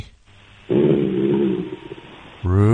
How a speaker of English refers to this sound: Ruby, sit! Ruby, who is it? Bad dog! Bad dog! He's not understanding. Ruby! Oh, he growled.